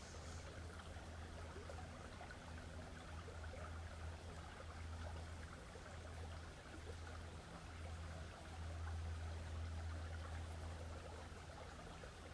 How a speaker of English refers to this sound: And let us just be here next to this beautiful river with our feet in the water. Surrounded by trees.